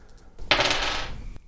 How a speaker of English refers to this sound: I'll tell you what I'll do. I'll roll the dice and let chance decide.